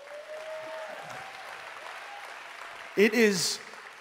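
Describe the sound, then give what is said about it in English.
A steady wash of audience applause for the worship team at moderate loudness, with a faint tonal whoop early on and a sudden loud voice or cheer breaking through near the end. “I want us all to give a round of applause to our worship team today.”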